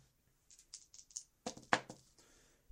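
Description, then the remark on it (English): Dice being rolled in a game, with two more dice added to the roll, rattle with a run of quick, light clicks, then clatter in two sharper, louder bursts that tumble and fade out. No one speaks. “Add two more dice.”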